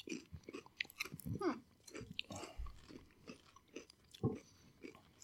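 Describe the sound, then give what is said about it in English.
Someone chews crisp seaweed snacks, a string of irregular dry crunches and crackles with a few sharper bites, fairly quiet throughout and with no talking. “We have salt and black pepper, sea salt and black pepper, and then we have the seaweed.”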